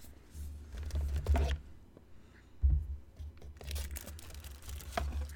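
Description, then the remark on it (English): A paper vomit bag printed with a movie poster is unfolded and crinkled, with bursts of crisp rustling, a couple of louder crunches, and soft handling bumps underneath. No one speaks. “And then I hate this, but so this is actually a paper bag and it says this vomit bag”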